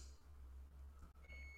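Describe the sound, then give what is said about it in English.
A single electronic beep, a steady high-pitched tone from an oven timer, comes in near the end over a low background hum. It sounds faint, with no talking. “You guys hear the oven beeping?”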